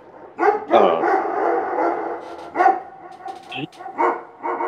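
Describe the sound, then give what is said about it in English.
Dogs bark repeatedly in short, irregular bursts, fairly loud, with a few sharper yips mixed in between the deeper barks. “Yeah, like sometimes one or two dogs start barking and then it just.”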